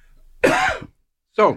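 A man coughs twice, a long raspy cough followed by a short pause and a second, briefer cough, with no talking in between.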